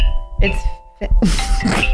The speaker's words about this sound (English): My phone's ringing.